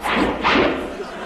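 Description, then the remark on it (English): Two quick whooshing sweeps follow one another, airy and fairly loud, with a breathy hiss trailing off after the second rush. “Sure enough, those whooshes were pointed at an early Anglo-Saxon leaping house in Piccadilly.”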